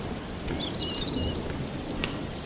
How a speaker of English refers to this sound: Oh, here comes a thunder.